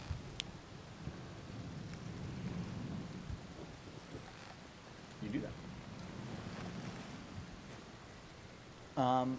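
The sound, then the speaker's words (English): Steady rain hisses over a deep, rolling rumble of thunder during a storm at sea, with gusting wind throughout; a voice briefly speaks near the end. “Within about an hour or so, it seems you come out of the stormy water.”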